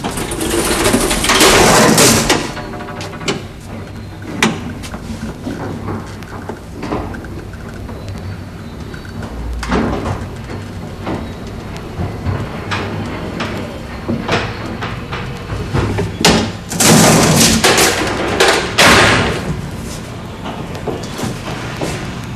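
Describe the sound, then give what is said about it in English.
A DC elevator from the Empire Building on Hastings Street, Vancouver, running up to the third floor: a low steady motor rumble with scattered clicks and clunks, no 60-cycle hum or fan noise, framed by two louder rushing surges of door movement at the start and near the end. No voices. “It's merely that the sounds associated with the second elevator are clean and unmasked.”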